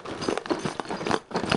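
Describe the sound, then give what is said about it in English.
A giant, heavy package from Up Vault E-Bike Club, New York, being opened on a table: a steady run of crinkling, rustling and tearing noises in irregular bursts, moderately loud, with no voices. “It's a giant, heavy package that I put on the table.”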